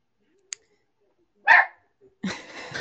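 A dog gives two short, loud barks, a sharp one followed by a longer, rougher bark, preceded by a faint click, with no talking.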